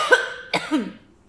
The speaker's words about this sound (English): I'm even coughing.